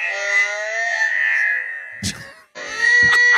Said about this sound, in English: It's slower. That's your horse. That's a long neigh.